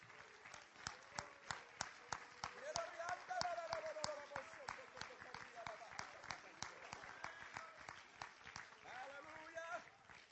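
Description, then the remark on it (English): An audience claps hands unto the Lord in a steady, rhythmic beat throughout, the sharp claps bright, with voices murmuring and calling out underneath. “I bind every spirit that would hinder the work of God to do a work in this place, and we clapped our hands unto the Lord right now.”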